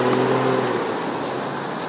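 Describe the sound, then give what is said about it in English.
A car rumbles by as people walk in front of it, its engine hum loud at first and then easing into a steady wash of road noise. No one speaks. “Oh my god, we just walked in front of the car.”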